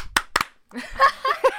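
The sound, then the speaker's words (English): Two sharp hand claps close together, slightly out of sync, an attempt at a synchronized clap, followed by voices talking and laughing. “I was going to say, let's do a synchronized clap.”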